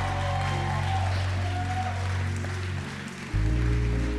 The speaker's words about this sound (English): We're going to honor young fathers today. If you would, clap your hands.